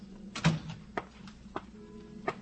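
A door opens at police headquarters at noon, with a handful of sharp latch clicks and knocks spread over a couple of seconds, fairly quiet, set against a low steady indoor hum.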